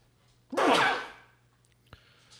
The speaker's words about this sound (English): I mean, I'm having a sneeze in the car.